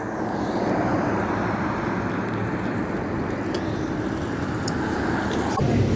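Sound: city bus arriving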